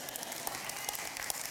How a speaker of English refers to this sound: Notice the clap sound on that statement. Half of you clap, the other half, well, we got one still going for it.